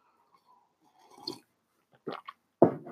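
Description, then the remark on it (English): A quiet slurp followed by a few wet gulping swallows, with short pauses between them and no talking, as a person sips a drink because their throat is bothering them. “Let me get a sip.”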